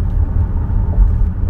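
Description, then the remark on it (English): A steady, heavy rumble of car engines as cars race down a street, loud, with a deep low roar that swells slightly midway and no one talking. “Why are these cars racing down the street?”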